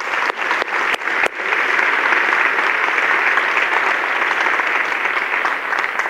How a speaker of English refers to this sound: And don't you appreciate Woodland Hills? They can't hear you, but I feel like we should clap.